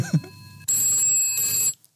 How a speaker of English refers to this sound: Well, the phone's ringing. I don't want to overwork the listeners' ears.